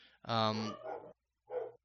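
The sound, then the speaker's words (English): Three fairly loud barks: a long, strained first bark runs straight into a shorter one, then a brief pause before a single final bark. It sounds like a human voice imitating a dog as it approaches. “A doggo approaches.”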